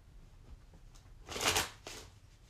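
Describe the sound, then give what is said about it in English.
A deck of tarot cards is shuffled in a quick riffle, a bright papery burst that swells for about half a second, followed by a softer second flutter and low handling rustles. “So these cards just want to go every which way, it seems like. Okay, I think I fixed them.”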